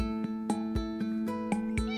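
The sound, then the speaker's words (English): A Mars Cat bionic home robot cat gives a steady, synthetic meowing tone, loud, in a promotional video, backed by a quick, regular beat of sharp clicks about four times a second. Nobody speaks. “Welcome to meet Mars Cat, a bionic cat, home robot.”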